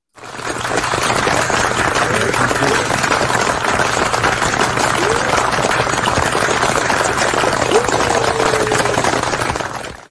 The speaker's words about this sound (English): Instead, what we've done is we've taken all the videos of all our community, of all our people, of all them clapping, and we've used it to make our guest intro.